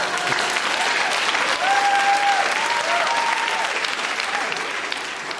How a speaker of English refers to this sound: And then it says, pause for applause. Yeah.